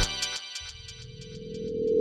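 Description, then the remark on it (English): A phone ringtone plays with a rapid, regularly pulsing high-pitched tone over a sustained low drone that steadily grows louder. No one speaks. “Hey man, you there? Pick up the phone.”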